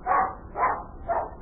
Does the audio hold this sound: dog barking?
yes